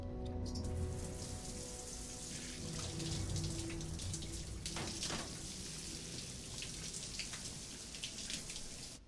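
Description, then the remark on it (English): Steady running water from a water supply section splashes continuously onto a hard surface as survivors wash themselves and wash away blood, with scattered droplet patter and faint background hum throughout. “Survivors, wash yourselves.”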